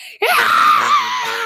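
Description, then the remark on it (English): A young girl, nearly three years old, lets out a loud, high-pitched shrieking scream after a brief pause and holds it steady for over a second, piercing, with no other sounds or talking. “She yells for like no reason. That's like her initial reaction to a lot of things. It's a loud shrieking scream.”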